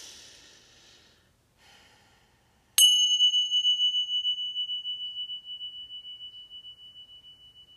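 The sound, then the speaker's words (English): After a few soft breaths, a bell is struck once for a brief sound bath and rings out with a clear, high sustained tone that wavers gently as it slowly fades. “We're going to do just a brief ringing of the bell to cleanse our energy, to give ourselves a little sound bath.”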